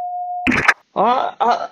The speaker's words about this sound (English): Leave me a message after the beep or get fucked.